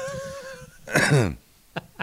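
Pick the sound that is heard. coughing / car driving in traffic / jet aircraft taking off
coughing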